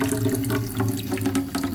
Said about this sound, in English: Well, look, put the water in the bucket for starters.